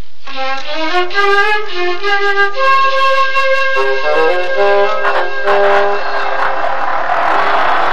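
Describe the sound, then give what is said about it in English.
A car engine turns over and catches, then revs up in rising surges, loud, with the motor's whine climbing and settling over several seconds, no voices. “So put those disgusting toadstools down and come and start the car for me.”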